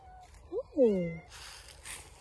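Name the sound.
domestic cat meowing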